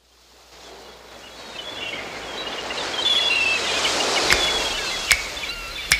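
Ocean waves wash in as a broad, hissing roar that swells steadily louder, with a few sharp splashes near the end and faint thin cries above the surf.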